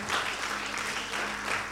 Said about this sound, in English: It's a good thing. If it's a good thing, let's clap to the Lord for it.